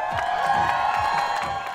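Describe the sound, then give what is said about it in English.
A crowd of revelers gathered around street performers at the Edmonton International Street Performers Festival in downtown Churchill Square, Edmonton, Canada, cheers and whoops with a steady, loud roar, scattered shouts and claps rising above a dense wash of voices throughout. “A crowd of revelers gather around street performers in Edmonton's downtown Churchill Square.”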